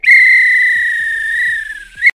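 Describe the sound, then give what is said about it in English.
A referee's whistle blown to end play gives one long, loud, shrill blast lasting about two seconds, steady in pitch with a sharp start and a brief swell just before it cuts off. “This is when the ref would blow the whistle because it's finished.”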